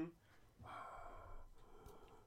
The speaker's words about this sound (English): That's not my Darth Vader impression. I just have problems breathing.